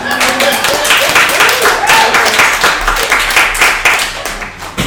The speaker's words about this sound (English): Pause for applause.